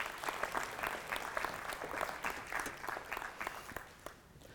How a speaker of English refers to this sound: So it is very scary getting up on the stage. So I want to give you a round of applause to encourage